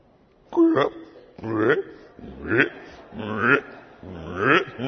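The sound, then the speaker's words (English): A person's voice imitates their dog Sadie about to vomit: five rhythmic, throaty heaving gulps, roughly one per second, each rising and falling in pitch, with no words spoken. “The moment she starts making the sounds, the intimations of vomiting.”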